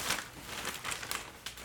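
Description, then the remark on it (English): A man shuffles and handles papers, a steady crinkly rustling with a few sharper crisp bursts, fairly quiet, with no talking. “And he's shuffling papers again.”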